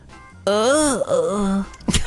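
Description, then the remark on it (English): A man imitates the groan his wife made in her sleep: one drawn-out, voiced moan lasting just over a second, its pitch sagging and wavering, followed by a brief breathy exhale. “It was like this groan”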